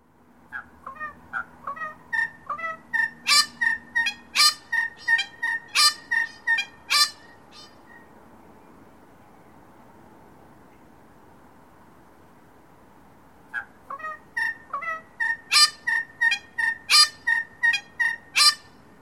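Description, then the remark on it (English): A honeyeater calls at Merry Creek in Melbourne, Australia, on Wurundjeri country, in two loud bouts of rapid, repeated grating notes mixed with brighter melodious tones, separated by a few seconds of quiet. No voices are heard. “Their calls are often heard in a repetitive pattern, which helps them to establish and defend their territories”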